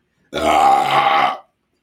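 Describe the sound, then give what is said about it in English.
A single loud, drawn-out burp after drinking beer, lasting over a second, low and rumbling with a raspy, gravelly texture, rising abruptly and cutting off cleanly, with no talking over it. “That beer is about to come back up.”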